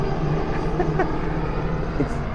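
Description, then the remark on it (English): A helicopter makes another pass overhead, its rotor making a steady, loud, dense rumble that fills the whole moment without fading, with a faint murmur of voices underneath. “I'm getting another pass from the helicopter over our head.”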